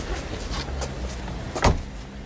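A car door thuds shut against the low, steady rumble of an engine, with a few lighter clicks and knocks before it, as the car sets off to drive out of Brno into the mountains; no voices.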